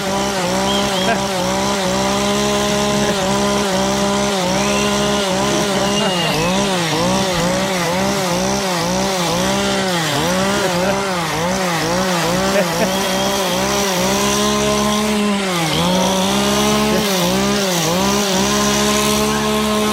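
A chainsaw roars loudly and continuously at full throttle for about twenty seconds, its engine pitch repeatedly surging and dipping as the throttle is pumped, dominant with nothing else audible.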